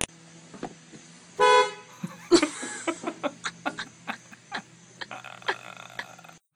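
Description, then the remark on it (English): A single short, loud car horn honk as an elderly woman carrying large milk containers walks across in front of the car, followed by a sharp bang and a run of clattering, clicking noises over a steady background hum. “And somebody takes it upon themselves to beep.”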